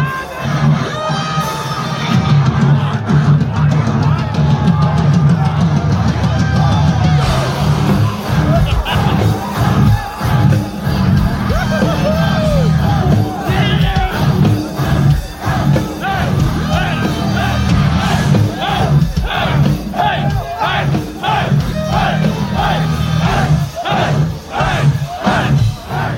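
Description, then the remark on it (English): A dense, loud crowd in a concert mosh pit roars and yells continuously, with overlapping shouts and whoops over a heavy low-end rumble. “With the band being blessed by the man dressed in a bathrobe, it was time to rejoin this mosh pit.”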